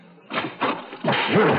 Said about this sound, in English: As soon as I saw the door crack open, I slammed it back on him with all my might and knocked him halfway across the room.